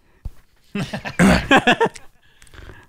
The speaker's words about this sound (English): Retching intensifies.